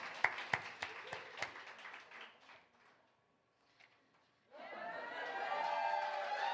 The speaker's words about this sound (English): No, applaud, applaud.